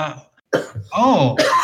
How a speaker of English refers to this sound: I'm going to cough, so go ahead and talk about it